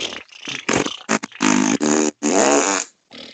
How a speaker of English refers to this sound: Now everybody fart. I said, let's all fart.